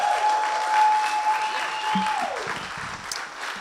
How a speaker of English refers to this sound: So let's give him a big round of applause as he comes.